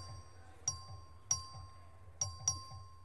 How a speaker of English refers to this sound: Ring the bell.